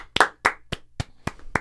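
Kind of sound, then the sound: crowd, people clapping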